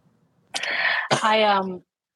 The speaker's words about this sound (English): The cough is still there. Sorry, pal. I know. I'm sorry. It happens. If it's not your cough, it's my mic, and that's what happens on the road.